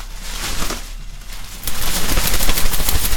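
An umbrella is shaken in a fast flurry, its fabric flapping in rapid, rattling bursts that start softer and grow louder and denser for the last half, with no one talking.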